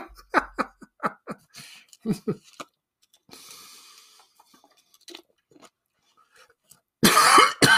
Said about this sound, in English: Excuse me. Sorry, I'm coughing. Talking too much.